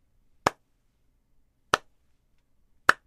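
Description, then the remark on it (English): Three sharp, isolated hand claps spaced slowly and evenly about a second and a quarter apart, each crisp and bright, with silence between them and no voices. “The old slow hand clap.”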